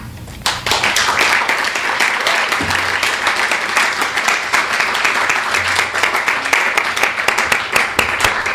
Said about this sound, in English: All right. Let's give it up for the poets.